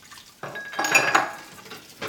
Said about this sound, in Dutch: Dan hoor je hem ook. Gezellig, hè? Die afwas.